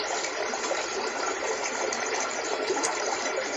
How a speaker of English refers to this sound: We have a river.